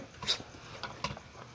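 A dog whimpers in a few short, high-pitched whines, fairly quiet, with brief gaps of near silence between them.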